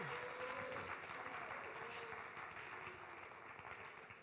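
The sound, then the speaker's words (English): A crowd claps hands steadily in praise to the Lord, a dense, continuous patter of many hands that stays loud throughout and eases slightly toward the end, with faint voices underneath. “Come on, clap your hands to the Lord right now and praise Him.”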